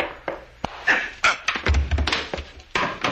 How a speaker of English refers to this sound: You didn't have to hit him so hard, Frank. That's the way you hit people with the butt of a gun.